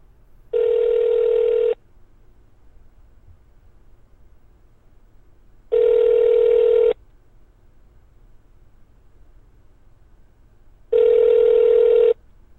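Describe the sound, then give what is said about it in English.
A phone ringing on the caller's end of an outgoing prank call placed from an iPhone with the number blocked: three evenly spaced ring tones, each about a second long with a few seconds of quiet between, clear and steady over a faint low hum. “Ladies and gentlemen, this is a prank phone call to”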